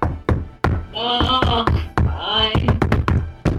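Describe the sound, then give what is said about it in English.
Loud banging on a house door in the morning: a rapid, irregular series of heavy knocks repeating throughout, with a wavering, voice-like tone sounding over the middle stretch. “Someone's banging on the door.”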